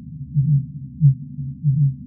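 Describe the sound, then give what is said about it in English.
Fin whale calls: three low, throbbing pulses, each a brief deep swell, repeating at uneven intervals over a steady low rumble, with no voices present. “I would say the most vocal among the species were the fin whales.”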